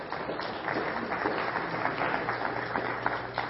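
Audience applause fills the whole stretch, a dense, steady patter of many hands clapping at an even, moderate loudness, with no voices on top.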